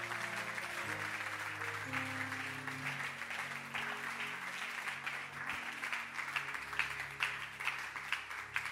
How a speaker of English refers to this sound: Beautiful. Oh, let your hand clap be resounding.